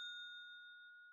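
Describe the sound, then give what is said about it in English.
A single bright bell ding, used as a spoiler warning bell, rings out clearly and alone, its clean metallic tone sustaining and slowly fading over about a second with no voices present. “Got a spoiler bell in here.”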